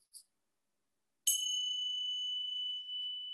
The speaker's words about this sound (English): I'll ring the bell and begin.